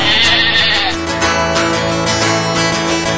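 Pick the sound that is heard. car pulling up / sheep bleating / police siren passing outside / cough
sheep bleating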